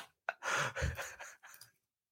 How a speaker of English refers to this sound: No, there's no heavy breathing. Settle down, everyone. Don't start inserting your own narrative. A little bit of heavy breathing.